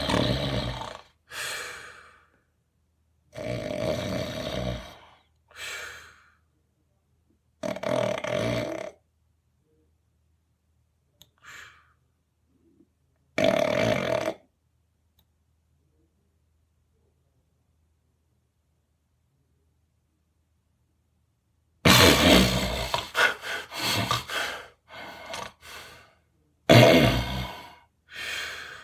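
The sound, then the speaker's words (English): A sleeper's heavy, rhythmic breaths repeat, then stop for several seconds of silence before a sudden, loud snapping gasp and a burst of rough, labored breathing. “And that snapping up that you hear is literally and usually in that time when the breathing stops, it can be like a minute, 2 minutes.”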